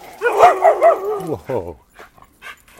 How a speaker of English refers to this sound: whoa, that's a big dog.